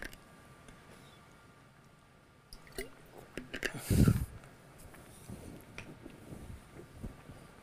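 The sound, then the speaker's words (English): Someone takes a drink of water: faint liquid sloshes and squishy mouth sounds, with one louder gulp-like burst midway, then quiet. No one speaks. “I'm going to take some water.”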